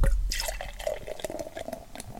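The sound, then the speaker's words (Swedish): Beer splashes and gurgles steadily as it is poured into a glass, with small dripping, bubbling noises throughout and no talking over it. “Så, och så har vi ett riktigt glas den här veckan.”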